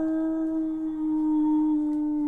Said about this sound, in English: Overhead, it sounds like a mix of almost howling and hyena laughing.